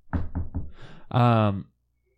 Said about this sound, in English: You better knock on some wood.